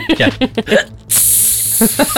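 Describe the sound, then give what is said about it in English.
A sudden, loud, sustained hiss of a high-pressure water jet spray from a hydrojet bursts in after some brief voiced sounds and holds steady for about a second, with a short vocal sound breaking in near the end. “My hydrojet killed him.”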